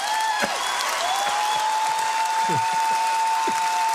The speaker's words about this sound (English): You know, you can tell that that's piped in applause and laughter. You can hear a single person screaming. This is an auditorium. So theoretically, there's 2,000 people in there. And meanwhile, you hear one person going, whoa, whoa.